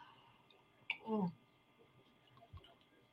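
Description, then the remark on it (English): A quiet sip of water: a short slurp followed by a wet gulp, then a soft low thud a moment later against faint background noise. “Let me take some more water here.”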